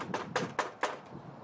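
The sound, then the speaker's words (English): Four evenly spaced knocks on a door rap out in a steady rhythm, each a sharp, fairly loud hit, with no talking around them. “You knock like this.”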